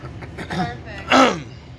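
A person clears their throat: a soft, brief rasp followed by a louder, gravelly burst with a voiced edge, about half a second long, with no talking around it.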